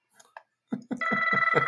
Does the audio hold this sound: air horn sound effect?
no